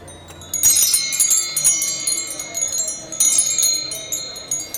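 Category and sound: household object, wind chime ringing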